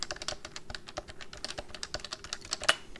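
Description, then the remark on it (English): Rapid, steady typing on a compact, dirty tenkeyless mechanical keyboard with arrow keys and no silencing rings, each keystroke sharp, clacky and loud, with no talking, keys bottoming out noisily without any dampening. “See how it's a lot louder? No silencing rings.”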